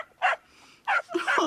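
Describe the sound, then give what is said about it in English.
A dog barks three times: two short, sharp yaps with a pause between them, then a longer, louder bark. No one speaks. “He's no longer our dog.”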